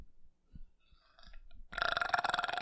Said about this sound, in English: There it is. And damn. Now he's burping like 5 years ago. There he is. It took a minute.